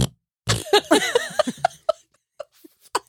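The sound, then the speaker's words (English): A fairly loud run of short sputtering fart noises, voiced like a mouth imitation, coming in uneven bursts that trail off into a few scattered pops. “That's a walk fart.”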